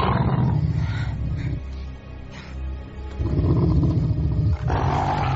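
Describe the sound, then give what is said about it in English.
A wolf growls deep and menacingly, a loud continuous rumble that eases briefly in the middle before swelling back into a harsher snarl. “You kill me, that wolf will tear you to bits.”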